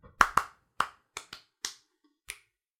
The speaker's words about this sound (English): Let me clap again. That's gonna be the new thing.